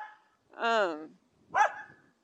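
A shaved poodle barks twice, first a drawn-out, whiny bark and then a shorter, sharper one after a brief pause, with quiet moments around them.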